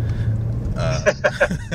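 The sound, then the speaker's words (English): Steady low engine drone heard from inside a 617-horsepower BMW M5's cabin while driving, with a few short voice-like bursts rising over the hum near the end. “Yeah, we're at the wheel of the M5.”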